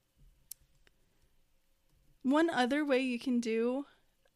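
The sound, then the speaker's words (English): A single crisp computer mouse click on the schedule button of a Pinterest pin module sounds near the start, followed by a fainter tick, then a person begins talking over a quiet background. “If I click there, it'll open up that same module that we just saw.”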